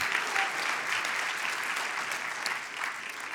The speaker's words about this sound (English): Yes, give the Lord a clap offering. Hallelujah.